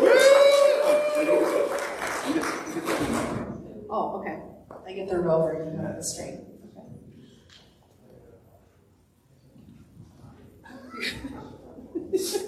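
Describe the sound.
An audience bursts into loud, dense applause, many hands clapping together for about three seconds before it dies away and a single voice begins talking.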